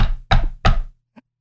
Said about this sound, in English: and a not very sturdy wooden door set into the wall facing the street. I'm going to loudly knock on that wooden door.